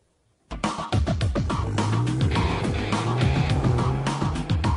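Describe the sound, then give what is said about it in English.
After a brief silence, a self-driving car's engine roars up loud, holding a steady drone with shifting pitch and rough road noise as it drives itself around a track through cones, with no one touching the accelerator or steering wheel, and no talking. “It's driving itself around the track, which is cool.”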